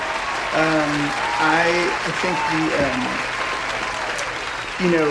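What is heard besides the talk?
audience applause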